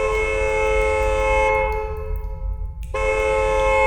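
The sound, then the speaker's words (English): A loud car horn blares in a long, steady, buzzy tone, dips partway through as if eased off, then blasts again at full strength over a low rumble. No one speaks. “She stopped at the sound of her car's horn.”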